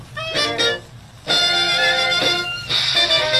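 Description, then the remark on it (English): An old Dixieland jazz record, streamed from Great78.archive.org, plays loudly, with bright brassy horns blaring in short bursts and then a sustained, busy ensemble passage. No one speaks over the music. “Let me press play and see if the Wi-Fi works here.”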